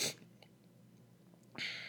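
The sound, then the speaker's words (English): A sharp sneeze bursts out at the start, followed by a short quiet stretch and then a breathy, hissing sniffle near the end. No one speaks. “Like, yeah, excuse the sniffling, man. Like I said, that sneeze hurt, man.”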